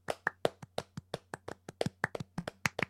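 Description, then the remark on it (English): A short round of applause for Sammy becoming Intercontinental Champion: about sixteen sharp, evenly spaced hand claps in a brisk steady rhythm, fairly loud, over a low constant hum, with no talking. “Round of applause.”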